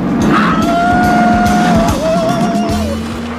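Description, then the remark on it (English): Loud car engines roar as two cars race each other on a road, a high whining tone holding steady and then dipping as the cars race along, with rumbling low-end noise throughout and no talking. “Steve finds Buddy on the road and challenges him to a race to entertain Tina.”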